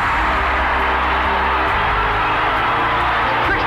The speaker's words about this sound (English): 62-55. The Huskers go back out on top by 7 points. And we'll have a timeout taken by Kansas. Listen to this crowd!